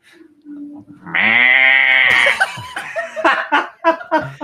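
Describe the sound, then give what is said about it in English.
A voice imitates a goat with one loud, nasal, wavering bleat held for about a second, followed by chuckling and people talking. “What sound does the goat make?”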